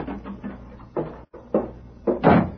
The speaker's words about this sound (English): Red Murphy looked up in surprise at the sound of the door.